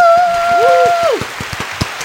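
A small crowd applauds a guest with quick, uneven claps, while a sustained whistle or cheer rings out over them at the start and then slides away.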